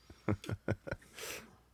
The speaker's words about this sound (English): My coffee made a little noise. It was not me, I promise.